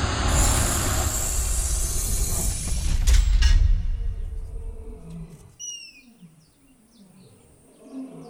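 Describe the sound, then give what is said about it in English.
A herd of elephants: a heavy, roaring rush of noise gives way to deep low rumbles and a few short, high trumpeting calls, with no talking. “Just vapoed Bloony right before we land near a bunch of elephants?”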